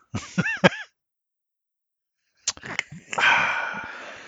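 Someone sips natural spring water: a few short squeaky, wavering tones, a brief silence, then wet clicks and swallowing sounds ending in a breathy, satisfied exhale.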